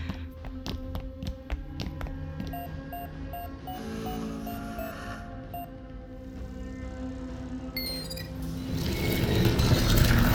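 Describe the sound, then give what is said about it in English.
A quick series of sharp taps entering a code on a wall keypad panel, followed by short electronic beeps and a mechanical whir that builds toward the end. No one speaks. “The keypad panel on the far wall.”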